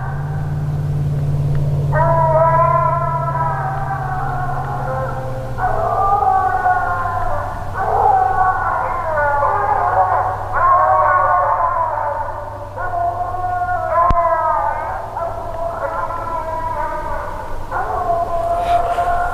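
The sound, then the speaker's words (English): A six-month-old hound pup bays at treed game about 600 to 700 yards away, long wavering howls coming one after another with short gaps, over a steady low engine-like hum throughout. “And keep in mind, this is a six-month-old pup, and this audio was recorded when the dogs were about 600 to 700 yards away, according to the Garmin.”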